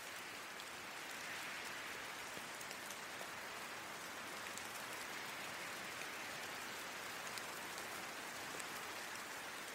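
Steady rain falls continuously, a dense hiss of drops pattering on a surface with no pauses. The sound is even in loudness throughout, with no voices.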